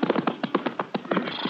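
Horse hooves clip-clop at a steady walking pace, a rhythmic run of fairly loud hoofbeats on hard ground with nothing else in the foreground, as riders on a horse borrowed from the corral and a horse named Charcoal head for a shack up in the hills.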